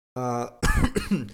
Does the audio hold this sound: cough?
yes